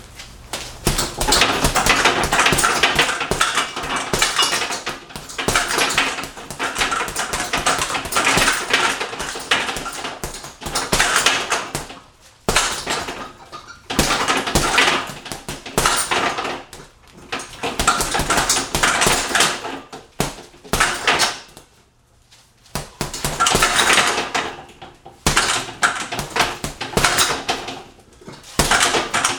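Flurries of punches thump against a heavy bag in loud, rapid bursts, broken by short pauses, with no one talking.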